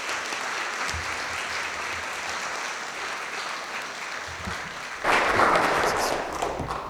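An audience claps steadily for a speaker who has just been introduced, in a dense, continuous patter of many hands, swelling noticeably louder for the final couple of seconds.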